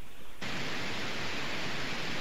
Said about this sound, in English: I'm getting some more static.